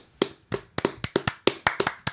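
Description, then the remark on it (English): Hands clap about ten times in a quick, slightly uneven rhythm. Each clap is a sharp, crisp smack with a short tail, standing alone with no talking. “Well, our clapping is good enough for now.”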